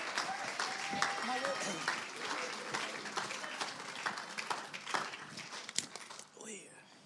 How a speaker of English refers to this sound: So let's give them a round of applause as they come.